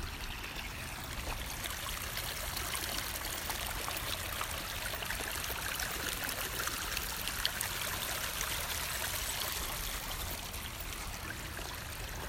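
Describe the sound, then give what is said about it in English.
Rainwater runoff after heavy rains rushes down Bernal Hill like a river in a steady, unbroken gurgle and hiss, fairly loud, with no voices or other sounds over it. “we will get right to it after we listen to this de facto river after heavy rains on Bernal Hill.”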